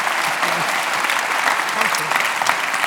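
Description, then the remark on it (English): Sustained applause from an audience thanking a guest, also meant as a happy birthday round of applause, a dense steady wash of clapping at even loudness throughout, with faint voices murmuring underneath. “Let's just make that round of applause a bit of a happy birthday round of applause for next week.”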